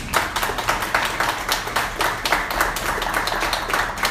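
Audience applause welcoming the new CEO of the Business Book Club fills the whole stretch: dense, steady clapping from many hands, bright and crackly, holding at a fairly even loudness with no voices over it.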